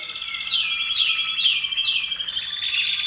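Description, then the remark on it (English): Canaries in show cages sing continuously in bright, high rolling trills and repeated chirping phrases, several birds overlapping with no talking, at a canary song competition. “Canary Song Trials”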